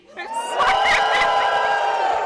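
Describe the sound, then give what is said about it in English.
A live crowd of Bubsy supporters erupts in loud cheering, with whoops and shouts swelling after a brief rise and holding steady at full volume for a couple of seconds. “A lot of Bubsy supporters in the crowd.”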